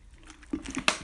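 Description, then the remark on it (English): A plastic water bottle squished: a soft squeeze and gulp, then a sharper crinkling crackle, over in about a second, with no talking. “That's my water bottle, sorry.”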